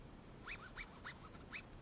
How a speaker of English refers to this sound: Alright, I'll give you some scratching on my tent sounds. This should sound like it's on your right.